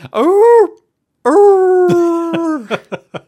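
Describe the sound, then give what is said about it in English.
A wolf howling sound effect from a show of Dracula rises and falls briefly, breaks off, then returns as a longer, steady howl that ends in a few short, clipped yelps. “Like, for example, my interrupted wolf howling sound effects.”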